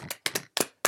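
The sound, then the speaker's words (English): A brief round of applause: a handful of sharp hand claps in an uneven rhythm, with short gaps between them and no voices. “Let's give a weekly undertaking round of applause”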